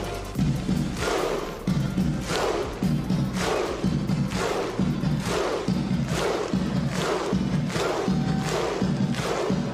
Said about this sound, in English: What you just heard there, folks, is the famous Viking skull clap for Team Iceland. Normally, it's done for the Team Iceland national football team, but I figure after this episode, they're going to be doing it for hockey as well,